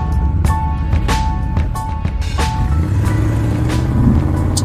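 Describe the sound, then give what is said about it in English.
A steady low rumble of road noise fills a moving car's cabin as it drives away from Monterey, with faint rattles and clicks over the hum and no one speaking. “Alright, so we are on the road, currently leaving Monterey after a chaotic week.”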